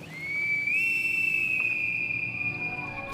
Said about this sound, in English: Then we hear a whistle like a bosun's pipe.